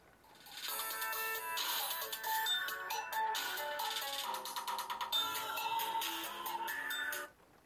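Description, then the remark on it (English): A mobile phone rings loudly, its bright electronic melody playing continuously for about seven seconds before cutting off, with no talking over it. “I should have turned my phone off.”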